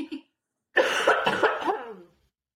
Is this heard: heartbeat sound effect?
no